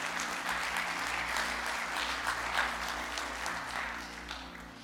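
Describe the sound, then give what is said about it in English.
An audience breaks into sustained applause, a dense wash of many hands clapping at steady volume before easing off slightly toward the end, with a low steady hum underneath. “That'd be a good place to clap.”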